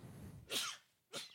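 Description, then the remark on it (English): Two sharp sneezes in quick succession, the first louder with a breathy intake before it and the second shorter, both bursting across a wide hissy range. “Bless you, brother.”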